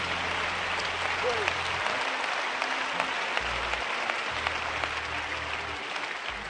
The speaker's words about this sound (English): Clap your hands and give God praise in this house one more time. Hallelujah.